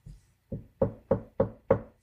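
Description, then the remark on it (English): Knocking on a wooden door: a soft first tap, then four firm, evenly spaced knocks in quick succession, clear, with no voices. “a clear knocking came from the door.”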